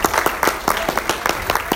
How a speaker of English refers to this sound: So somebody give the Lord a great hand clap.